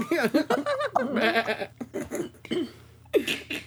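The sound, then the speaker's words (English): A person imitates a goat's bleat with a wavering, quavering voice, delivered in a few loud, drawn-out bursts with brief pauses between them. “And voices the goat.”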